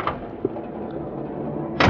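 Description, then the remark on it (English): A bedroom door clicks and thuds as it opens or closes, with a soft knock in between and a louder bump at the end, over a low room hum and no voices. “I did hesitate for a minute outside my bedroom door and then decided that he who hesitates is a hesitator.”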